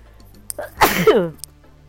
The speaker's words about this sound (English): I got to sneeze, y'all, hold on.